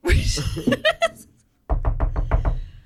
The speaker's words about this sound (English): A horse hoof on a door. I think there's a horse at the door.